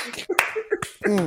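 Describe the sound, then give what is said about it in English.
A few sharp, loud hand claps land at uneven intervals over a brief stretch of vocal sounds and murmuring voices. “Mega clap.”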